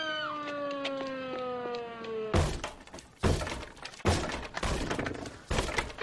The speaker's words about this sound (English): Wow. Just smash a hole in the door. It took a little bit of effort.